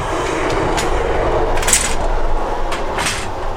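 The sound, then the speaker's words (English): A train rumbles steadily past through a level crossing, its wheels giving a continuous clattering roar with a few sharper metallic bursts, loud throughout and with no voices. “Here comes the train.”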